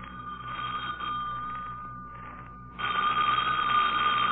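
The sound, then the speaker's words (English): An old-fashioned telephone bell rings steadily, pauses briefly, then resumes louder and more insistent. No one speaks. “Don't answer that, Lamont. I know it'll be someone who'll give an excuse for not taking me to the lecture.”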